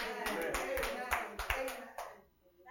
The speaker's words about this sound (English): Oh, that's a clapping. Yeah. That's great. Wow.